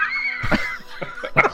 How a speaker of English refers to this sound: There's a cough button on your microphone if you have to do that. Sorry, throat's a little raw.